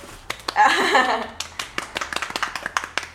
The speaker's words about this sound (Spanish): Aplausos.